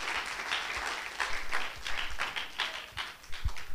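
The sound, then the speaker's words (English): A seated church audience claps hands together, a dense crackle of many overlapping claps that holds steady and fairly loud throughout, with no voices rising above it. “Clap your hands as you're seated tonight.”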